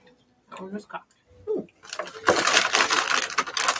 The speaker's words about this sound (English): That one was cocked. That was fukakta. It was between. Okay, it landed between two other dice. 19.